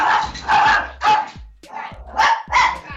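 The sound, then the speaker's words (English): Dogs bark loudly, firing off a rapid run of about six sharp barks in uneven bursts, with no talking underneath. “Aw, dogs. I'm so sorry.”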